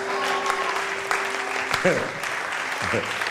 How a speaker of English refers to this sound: Oh, give the Lord a clap. Are you clapping for the Lord?